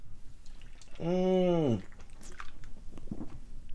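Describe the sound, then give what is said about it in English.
A wet sip of a Truly hard seltzer followed by a sustained, drawn-out satisfied vocal sigh, then quiet smacking and shuffling noises. “I need another sip of this Truly.”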